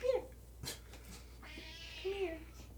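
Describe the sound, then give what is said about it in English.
A cat meows twice, first a short chirp and then a longer, drawn-out wavering meow, soft, with a brief click between the two calls and no talking. “Hi, big kitty.”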